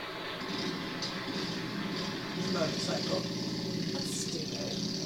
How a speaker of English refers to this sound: Motorcycle. That's stupid. That's stupid. I was looking for something more exciting.